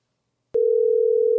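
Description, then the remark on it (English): A steady electronic phone tone starts abruptly after a brief silence and holds at an even, moderate level to the end, like the ringing heard while an outgoing call connects. “I love how you guys can hear the ringing.”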